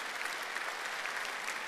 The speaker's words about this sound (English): Isn't our God amazing? Can we just give him an applause for what he's done?